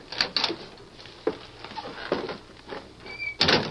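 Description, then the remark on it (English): The door of a little shack on the edge of the town of Sand Springs opens with a handle rattle, a few knocks and shuffles, a thin squeak of a hinge, then a louder clattering thump as it swings to a stop. “Go on, open the door, Lacey.”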